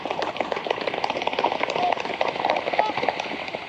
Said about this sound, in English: This flock of trumpeter swans is coming in for a splash landing at Magness Lake, just outside of Heber Springs in Arkansas.